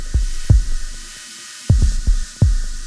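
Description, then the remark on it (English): A deep drum and bass tune: heavy, booming kick thumps land in an irregular rolling pattern over a low hum and a soft wash of airy noise, with no voices. “this gentle little number coming in is … by … out of Metalheadz”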